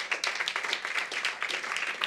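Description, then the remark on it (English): An audience claps in a dense, steady patter of overlapping hand claps, moderately loud and continuous throughout, with no voices standing out. “But that, some of you are not clapping.”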